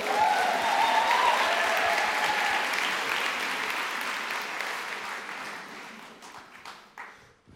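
A crowd bursts into sustained applause for the first person about to share her story tonight, a dense wash of many hands clapping that holds steady for several seconds, then thins to scattered individual claps as it dies away.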